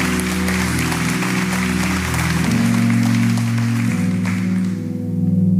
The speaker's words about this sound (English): If you were part of setting up the baptistry pool or creating this environment in here today, lights, cameras, in fact, everybody just turn around and let's applaud those guys right now. How about that, right?